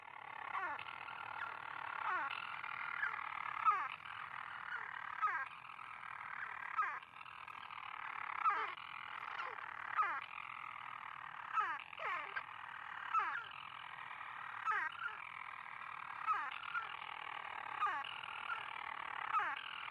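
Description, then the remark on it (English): A single storm petrel's call early in the evening, in the darkness at a monastery on a peak: a steady, buzzing purr that runs without a break, punctuated every second or so by short downward-sliding hiccup notes, with no voices. “Early in the evening, a single storm petrel makes its call.”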